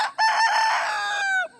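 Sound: rooster crowing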